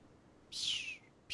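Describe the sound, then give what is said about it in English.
A voice imitates the caw of a bird flying by: one loud, high, downward-sliding screech lasting about half a second, then the start of a second cry right at the end, against a quiet background. “That was a bird flying. Caw-caw.”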